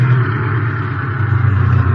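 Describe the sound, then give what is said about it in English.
A car engine rumbles steadily, a low, continuous mid-pitched drone with slight revving as the vehicle slowly turns into a warehouse, no voices present. “Here, turn here. Look, look, that must be the warehouse.”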